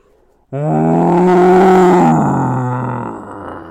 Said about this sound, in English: with an angry roar, the monster closed his fists around my mother's neck